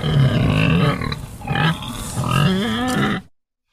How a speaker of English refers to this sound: let's talk about pigs.